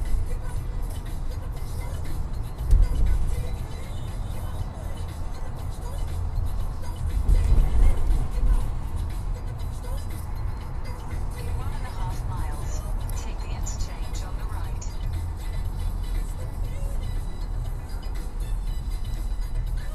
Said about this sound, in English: Get a little traffic, y'all. Shoot. I didn't want to come this way. Oh. That's why I got on the feeder to avoid traffic and put me right back into traffic.